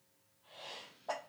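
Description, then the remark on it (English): A single sneeze: a breathy, rising inhale followed by a sharp, explosive burst that trails off quickly, with no talking around it. “Get it all out, girl. I got the sneezles.”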